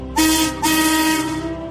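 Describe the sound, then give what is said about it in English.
The whistle of Marion, the railway steam shovel from Thomas the Tank Engine, gives two loud, breathy toots, a short blast and then a longer sustained one, with a strong hiss of steam over its steady tone. “Marion is bubbly and funny and has a whistle that sounds like this.”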